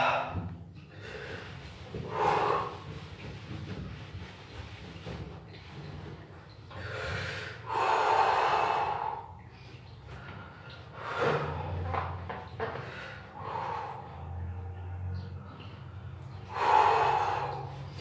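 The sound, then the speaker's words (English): Heavy, forceful breaths of a breathing exercise after a cold shower repeat in bursts, sharp inhales and loud exhales following one another, with brief pauses between them and a low background rumble. “I still gotta continue doing my breathing, because my breathing, or the breathing, is what kind of controls.”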